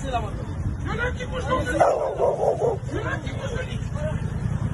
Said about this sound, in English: Where's the dog? Did I hear a dog?